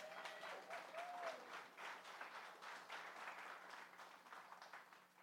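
Sustained applause from a large indoor crowd, dense overlapping clapping that stays steady for several seconds, with a faint whoop or whistle rising briefly near the start.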